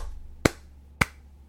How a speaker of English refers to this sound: Seamus, give me a hand. Uncle Seamus began clapping.